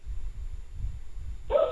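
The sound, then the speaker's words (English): After a stretch of low background rumble, a dog lets out a single loud, sharp bark right at the end, cut off abruptly. “The dogs are barking.”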